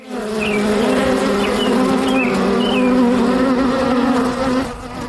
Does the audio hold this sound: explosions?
no